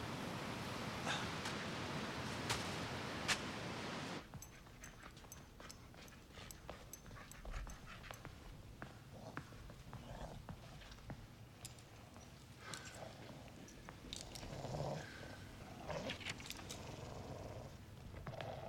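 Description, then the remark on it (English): A police dog pants steadily, breathy and continuous, with a few small whimpers and soft clicks breaking through after a noisier opening stretch. No one speaks. “He's really a police dog.”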